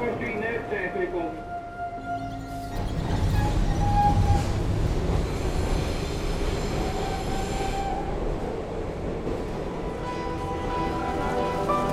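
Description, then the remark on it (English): A subway train rumbles along the rails underground, growing louder after a couple of seconds into a steady roar with faint squealing tones and a low clatter of wheels, headed to Chinatown. “Down here, subway. We're headed to Chinatown.”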